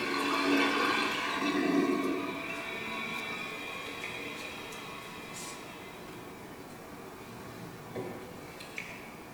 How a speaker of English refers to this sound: Oh, here we go. Toilet flushing.